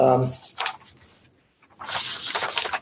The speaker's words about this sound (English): So I'm going to tell some of these stories and he was also a great poet, so I'll talk about some of his poetry, but sorry for the sound of paper rustling.